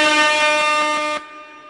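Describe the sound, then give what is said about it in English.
A loud, blaring air horn blast holds steady for just over a second, then cuts off abruptly, leaving a faint ringing tail. No one speaks. “I don't think that was really air horn worthy, but you know, the blaring of the sirens.”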